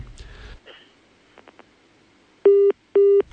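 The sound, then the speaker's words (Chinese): Two loud, steady electronic beeps of equal length from a phone line after a listener's call to a radio programme disconnected as it was put through, evenly spaced like a busy or disconnect tone, following a brief muffled noise and faint clicks. “刚才这个电话也是没有接进来，刚才接进来时候已经断线了哈，我们请这刚才那位听众朋友再打一遍。”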